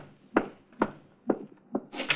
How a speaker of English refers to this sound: Someone's at the door. It might be him. I'll get it.